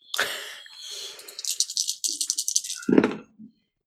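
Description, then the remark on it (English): Dice clatter and rattle in a hand, then spill out with a quick series of clicks and taps, ending in a soft thud as they settle. “Looking for dice. Found the dice.”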